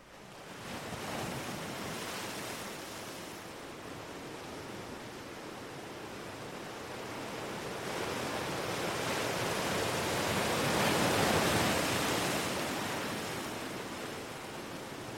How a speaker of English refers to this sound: Soothing sounds of the ocean. It teaches us something, you know, the ocean, when we go there.